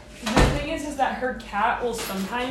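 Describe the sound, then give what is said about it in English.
A door is pushed open with quite a bit of force, giving a short, solid knock near the start, while a person talks over it throughout. “No, you need force. I'm pushing it with quite a bit of force.”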